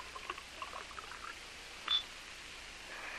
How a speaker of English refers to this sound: Come on, pour me that drink. Sure, boss, sure. Big drink do you good, boss.